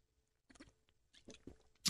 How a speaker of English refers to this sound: Excuse me, I got to get a sip of water. I didn't drink enough before I got on the air.